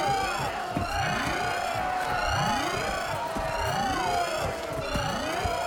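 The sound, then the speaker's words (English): An alarm siren, sounded because zombies have got out, blares in repeated rising whoops, roughly one per second, layered over a dense, clattering wash of noise that stays loud and steady throughout. “Sound the alarm!”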